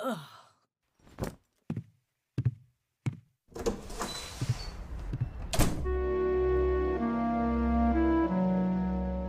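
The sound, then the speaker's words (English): Several sharp knocks and footfalls lead into a door being opened and shut with a solid thud as a man grabs his jacket and goes out, after which soft, sustained music swells in and continues. “I stood there, too stunned to answer as he grabbed his jacket and went out the door.”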